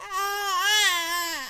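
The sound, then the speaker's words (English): A baby makes a drawn-out, high-pitched squeaky vocalization that wavers slightly in pitch, rising a little in the middle before sliding down at the end. No one else is talking. “Your little squeaks are going to be all over this recording, buddy.”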